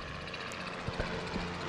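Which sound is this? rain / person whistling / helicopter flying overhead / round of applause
helicopter flying overhead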